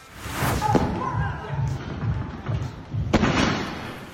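A heavy body-slam impact lands with a loud thud, followed a few seconds later by a second hard slam, over a steady rumbling background of noise.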